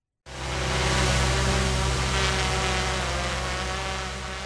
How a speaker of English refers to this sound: That's a Boise Police Department drone, or using the official title, an unmanned aerial vehicle. The department now has four drones, and four officers now have FAA Remote Pilot Certification.